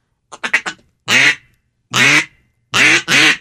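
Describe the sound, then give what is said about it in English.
A newly bought duck call is blown by a beginner: a quick run of four short clucks, then three loud, drawn-out raspy quacks spaced by brief pauses, with no talking. “Sounds like a duck to me.”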